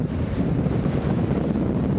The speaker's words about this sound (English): But it's no winter wonderland for the people who live in this waterfront neighborhood on Lake Erie in upstate New York. The extraordinary scene comes after gale force winds created huge waves, which sprayed water on the shore.